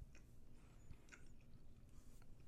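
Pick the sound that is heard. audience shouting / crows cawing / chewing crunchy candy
chewing crunchy candy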